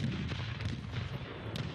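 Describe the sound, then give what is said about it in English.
Deep, rumbling cannon fire from five cannons turned by a mob on the Free State Hotel rolls on without pause, heavy booms blurring into a dense, loud low roar, with a few sharper cracks breaking through near the end. No voices. “The mob fired the cannons at the hotel and burned the house where the Free State governor lived.”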